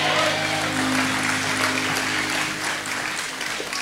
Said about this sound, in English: And everybody that agrees, I want you to shout amen and give God a good hand clap. Amen.